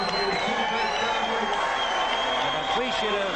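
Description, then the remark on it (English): A standing boxing crowd in the sold-out poker room at the Sands applauds the two fighters after the 14th round, a dense, unbroken wash of clapping and crowd noise, with a voice speaking over the top. “An appreciative audience in the sold-out poker room in the Sands applauding these.”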